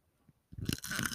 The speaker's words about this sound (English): Let me try to get an ASMR crunch for our audience here. Is that piece still crunchy?